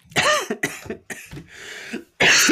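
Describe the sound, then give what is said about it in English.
A person who is sick coughs in a run of harsh coughs in quick bursts, about five or six fits with brief gaps between them, ending in one loud, forceful cough. “You're welcome, by the way, for my coughing.”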